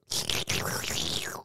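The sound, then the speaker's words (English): A loud, wet slurp of someone sipping water, in two airy sucking pulls separated by a brief break, the second trailing off with a falling gurgle. No one speaks. “Sorry, slurp.”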